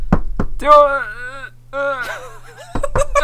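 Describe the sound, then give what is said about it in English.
Two sharp knocks on a door, then a long drawn-out wailing voice, followed by another quick flurry of knocks near the end. “Was that the door announcing it that it was a door?”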